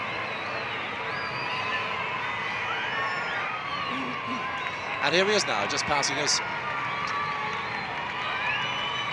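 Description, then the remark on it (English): A large crowd cheers Pope John Paul's passing motorcade with outriders in a steady, dense roar near the Monastery of Our Lady of Refuge and the Church of Our Lady of Lourdes, swelling midway with shrill whistles and high shouts, while a man speaks over the noise. “Pope John Paul getting an enthusiastic welcome from the crowd, who have mainly concentrated around the Church of Our Lady of Lourdes, which holds the shrine of the Venerable Matt Talbot.”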